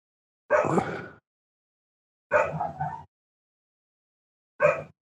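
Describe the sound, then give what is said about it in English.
A dog barks three times, loud, each bark drawn out and separated by a couple of seconds of silence. “Do you hear my dog?”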